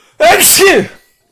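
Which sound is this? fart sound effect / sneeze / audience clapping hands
sneeze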